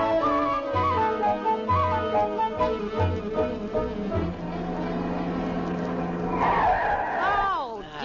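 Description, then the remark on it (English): A car skids with loud, high-pitched squealing brakes, the screech bending and wavering before stopping, over a busy music-like background. “Get them brakes fixed.”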